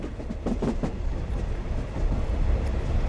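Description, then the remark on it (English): A health-care train, carrying a staff of 40 health professionals and students and travelling 10,000 miles a year to reach communities in need of health care, rumbles steadily along a railway track, its wheels clattering in a quick rhythmic series of clicks over a deep continuous roar, fairly loud with no voices. “Pelopepa travels 10,000 miles a year to reach communities in need of health care, taking 2 years to cover the areas within reach of the railway track.”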